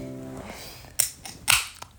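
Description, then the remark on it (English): A can of a singer being opened: a sharp metallic crack, then a second louder snap followed by a brief bright fizzing hiss. A short voiced sound trails off at the start. “opening a can of ….”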